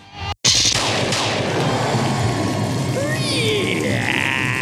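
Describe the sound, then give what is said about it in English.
A door creaks as Father Fred enters the Black Barn, as in the comic Gideon Falls number 6: a few drawn-out, wavering squeaks rise and fall over a loud, steady rushing background that cuts out briefly near the start. “Creak is the sound of Father Fred entering the Black Barn, as seen in the pages of Gideon Falls number 6.”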